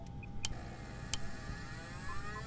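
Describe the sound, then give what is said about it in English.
A spaceship's FTL drive starting up as the pilot tries it: a low rumbling hum with two sharp clicks, followed by a rising electronic whine that climbs steadily in pitch as the drive spins up. No one speaks. “try the FTL drive now”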